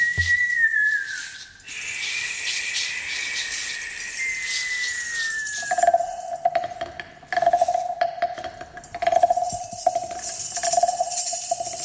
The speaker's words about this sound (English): gwynt, gwynt yn chwibannu, yn chwibannu dros y mynydd. Wind whistles over the mountain.